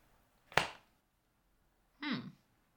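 A single sharp slap of a hand on thighs rings out and fades quickly; about a second and a half later comes a short, falling whimper-like vocal sound.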